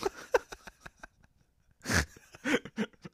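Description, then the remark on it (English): A loud, noisy snort bursts out in the middle of breathy laughter, with short sharp exhales and clicks before it and a few more chuckling bursts after. “Oh, man, I think I just snorted on air for the first time.”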